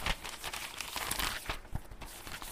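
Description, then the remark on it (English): A paper with written notes is picked up and crinkled, a few seconds of dense, crackly rustling with sharp crunchy bursts, no voices. “Matter of fact, I wrote it down. I'll read you exactly what this bitch ass nigga said. Gotta get the paper.”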